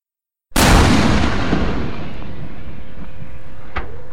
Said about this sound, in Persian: اما مرد پیش از اینکه اونها برسند تپانچه رو در آورده و به سمت شاه خالی میکنه.